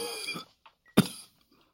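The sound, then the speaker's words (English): A woman, a mother, coughs: a strained, raspy vocal sound gives way to one sharp, forceful cough that trails off quickly, with no talking. “She began to cough again.”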